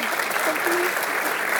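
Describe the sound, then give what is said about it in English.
An audience claps steadily to welcome a deep sea scientist and explorer as she is introduced, a dense, even wash of applause that holds at the same loudness from start to finish, with a faint voice or cheer briefly rising above it. “Give her a huge round of applause as well.”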